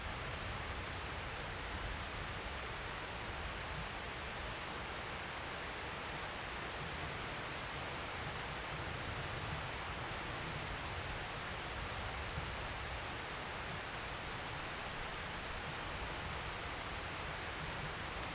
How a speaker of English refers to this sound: Those who feel the rain and who don't feel the rain can be cleansed by this rain.